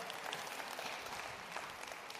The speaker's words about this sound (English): If you guys would, let's give them a round of applause for helping out here.